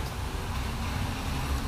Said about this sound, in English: I'm just standing at a bus stop on one of the busiest intersections in Hamilton, Ontario. It's Upper James and Mohawk. So there's a lot of traffic here.